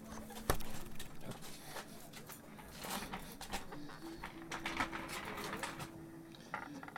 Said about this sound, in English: And you just make some noise with the tambourine.